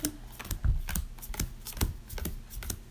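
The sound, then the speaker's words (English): Rustling and flicking of stiff homemade cardstock paper dividers, with a quick series of crisp snaps and soft thumps as they're shuffled and handled, no one speaking. “Let me finish doing this and I'll give you the little dividers that I made out of some paper.”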